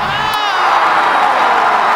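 A large crowd cheers loudly and continuously, a dense roar of voices with scattered whoops and shouts rising out of it, holding steady for the full two seconds.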